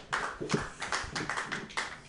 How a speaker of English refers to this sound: Clapping wildly, yay!